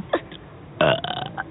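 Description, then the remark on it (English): A short hiccup-like sound leads into a loud, drawn-out belch with a rough, gurgling tone, let out as practice, with no talking over it. “before we go walking, we should let some burps out to practice before we start saying happy birthday to everybody.”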